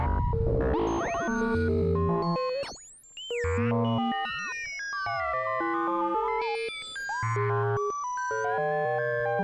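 Synthesized FM sine-wave tones chirp, sweep and warble in dense, shifting layers, with bright pitch glides and bell-like metallic overtones, played loud and continuous with a brief dip midway, no voices.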